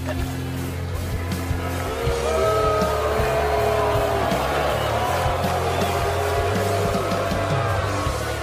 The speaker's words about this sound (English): The booing is okay. It just means you're hockey ready.